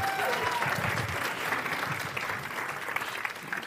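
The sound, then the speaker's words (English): A church audience breaks into steady applause for a pastor about to share the gospel at a morning service, a dense wash of many hands clapping at an even level for several seconds, with a few cheers or voices faintly mixed in. “Can we give him a round of applause this morning?”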